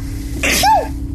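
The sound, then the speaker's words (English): A single sharp sneeze bursts out, a quick breathy intake followed by an explosive, tonal release that fades within a second over a low background hum. “Bless you.”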